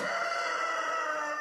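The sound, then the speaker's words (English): A rooster crows loudly in the morning in North Tipperary, Ireland, one long, strained, harmonic call held steady for the whole moment without a break, with no voices or other sounds around it. “There's no problem waking up here every morning, anyway.”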